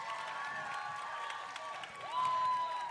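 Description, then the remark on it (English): A concert audience claps and cheers steadily after a song, with dense applause and sustained whoops and whistles that swell louder toward the end, without any talking. “Thanks for clapping.”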